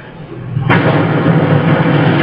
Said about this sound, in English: There's the explosion.